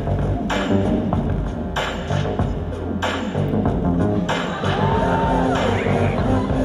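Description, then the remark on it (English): A loud crowd at a school routine roars and cheers continuously as Mr. Kincheloe, the Dean of Students and Assistant Principal, gets up, with bursts of whoops and shouts rising over a dense wash of voices and a steady low rumble underneath. “My favorite part of the routine is when Mr. Kincheloe gets up and the crowd goes crazy.”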